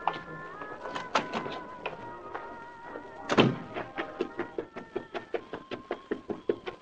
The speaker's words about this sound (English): He paused at the phone booth only long enough to hang up the instrument and make sure he was not observed as he slipped out the side door.